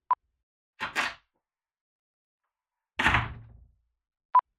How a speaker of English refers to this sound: this is a simple door, open and close.